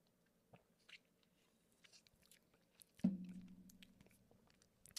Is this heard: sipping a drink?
yes